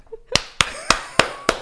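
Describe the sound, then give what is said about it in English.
A slow hand clap: five sharp, crisp claps in a steady, even rhythm, each ringing briefly before the next, with no talking. “Sorry, that's my slow clap.”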